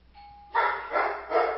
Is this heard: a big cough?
no